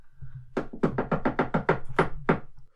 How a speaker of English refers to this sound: What's the special knock? Here we go. Ready? Yeah.